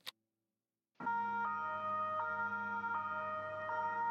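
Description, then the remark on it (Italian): A police siren sound effect, played by pressing a button on a table, starts abruptly after a short click and silence, its two-tone wail alternating steadily and loud, with no one speaking. “Partì l'effetto sonoro della sirena della polizia.”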